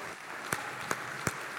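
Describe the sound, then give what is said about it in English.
An audience at a church service applauds as a clap offering to God, a dense wash of clapping with a few sharper claps landing in a steady beat about every third of a second, fairly loud with no voices. “Come on, give God a clap offering here.”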